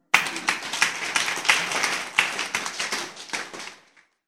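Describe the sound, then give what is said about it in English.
An audience claps, many hands making a dense, steady patter of sharp slaps that holds for a few seconds, then thins out and fades away. No one speaks over it. “If you are clapping, you can clap.”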